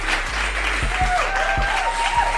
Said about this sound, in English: As you guys already know, and probably can see for the ones who have been here on our YouTube channel for a pretty long time, we've reached 10,000 subscribers. Yay! See my applause.